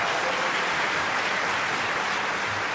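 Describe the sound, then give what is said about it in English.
Steady audience applause, a dense, continuous wash of many hands clapping at an even loudness throughout, with no voices standing out above it. “I had the applause die down for a second.”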